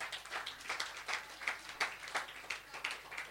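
A round of applause at a youth group for a volunteer coming up to the stage: quiet, steady clapping with sharp bright claps in a fairly even rhythm, roughly three per second, from what sounds like a small group, with no voices.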